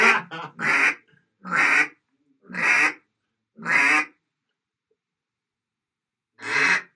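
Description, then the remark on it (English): Mallard hen quacks blown on a duck call, loud: a quick stuttered opening, four evenly spaced nasal quacks about a second apart, then a pause and one final quack. “So that's your basic quack.”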